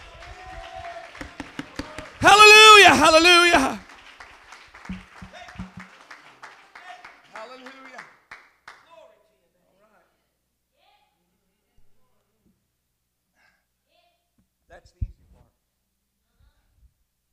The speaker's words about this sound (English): Clap your hands if you love the church.